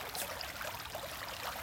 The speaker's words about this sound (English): It's a nice evening. You decide to lay on the bank. Intently focusing at the water going down the stream.